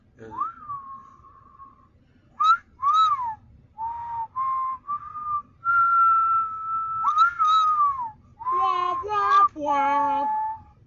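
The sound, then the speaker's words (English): Eerie whistling, like the random whistling reported in an abandoned building, in a series of sliding, wavering notes, some long and held, others short and bending, loud with no talking over it. “Since the building has become abandoned, people have reported hearing noises, random whistling, and seeing ominous ghost-like figures in and around the structure.”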